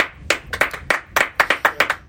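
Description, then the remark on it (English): A studio audience gives brief applause of scattered, distinct hand claps, about a dozen sharp slaps in an uneven rhythm, fairly loud, sounding like only a few people clapping rather than a dense crowd. No one speaks. “Thank you for my studio audience here today.”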